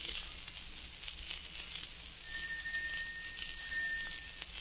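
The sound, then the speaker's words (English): A bright electric doorbell rings in two sustained bursts, the second following shortly after the first, against a faint background hiss with no one speaking. “Answer the doorbell, will you?”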